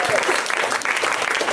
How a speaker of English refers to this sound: Fucking amazing. We don't even tell you to clap. You just put that together. You put these together. You know what they were? They were your hands.